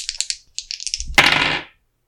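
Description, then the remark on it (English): Dice rattle with a quick series of sharp clicks, then tumble out in a louder, clattering roll across a hard surface that stops after a moment. Clear, no talking. “Let's go, dice. Let's do some work.”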